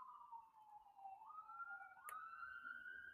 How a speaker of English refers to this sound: But I don't really need sound effects when I got sirens in the background that just keep going off. And I don't even live in the hood.